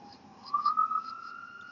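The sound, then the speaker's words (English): A siren wails outdoors at night, a steady high tone that swells slightly and rises in pitch before holding level, moderately faint over a low background hum, with no talking. “As you can see, I'm outside, so ain't really nothing going on. Sirens going off.”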